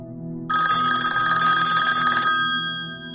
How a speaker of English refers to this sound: Oh my God, really? Really? Somebody's got their cell phone on and it's going off.